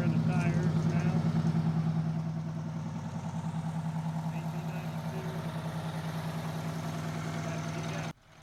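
A large old bus engine, started after the bus sat unused for five years, idles in a loud, steady low rumble with a droning hum that holds evenly for several seconds before cutting off abruptly.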